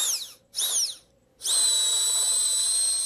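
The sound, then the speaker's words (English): A sick person makes a shrill, drill-like wheezing whine: two short swooping bursts with brief pauses, then a long, steady high-pitched tone, fairly loud, with no talking. “Who knew that I could sound like a drill when I'm sick?”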